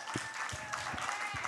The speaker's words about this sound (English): See, that was a very weak, it was like a half clap, because that requires us to actually work and do something.